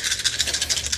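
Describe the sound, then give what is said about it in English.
A handful of ten dice rattles in quick, steady bursts during a tabletop game roll, about ten bright clattering pulses in a second, with no voices. “I got 10 dice for it.”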